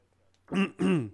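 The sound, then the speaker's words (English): A person clears their throat twice in quick succession, two short, gravelly, voiced bursts, with near silence before and no talking. “Sorry, clearing my throat.”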